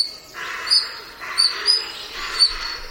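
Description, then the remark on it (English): Shrill, bird-like squeaks from a pair of European otters (Lutra lutra) in the wetlands of Northumberland, England, repeat in short bursts over a steady hiss of background noise, several sharp high peaks spaced irregularly across a few seconds. “Now, these high-pitched squeaks might sound like birds, but they're actually the calls of a pair of otters, The European otter, or Lutra lutra, is an endangered species in Britain, mainly due to wetland drainage and water pollution.”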